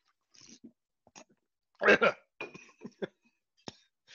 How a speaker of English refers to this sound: that's the coffee I'm drinking right now, some pralines and something else. Let me take a sip. Let me just remind myself how perfect it is.